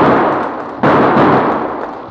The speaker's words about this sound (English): The shots came right from those aspens. Yeah, right where Big Jake rode.